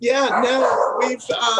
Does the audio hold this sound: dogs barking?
yes